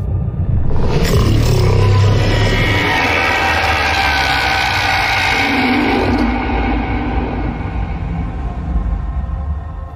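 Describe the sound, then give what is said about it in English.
A loud, sustained alien roar, heard in a ship's video replay of the Thargoids' victory, swells in abruptly and holds for several seconds, deep rumbling underneath a harsh, droning tone that pulses slightly before slowly easing off. No voices. “Some have suggested it may have been a roar of triumph.”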